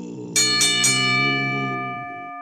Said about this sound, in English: The crowd roars in anticipation. Ring the bell.